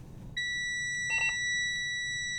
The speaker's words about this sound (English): After the initial beeping stops, a green light on the dashboard tells Berkemaus that he can hit the accelerator.